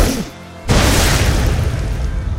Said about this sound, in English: And he evaporates, basically. There's just an explosion, blood, brains, body parts, sizzling flesh.